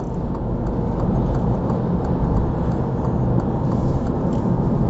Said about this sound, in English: But that lorry there, like, this is a big old, there's tonnage on the back of this lorry. And the way he just pulled out, like it was nothing. He's just like, yeah, I'll just pop into that little space.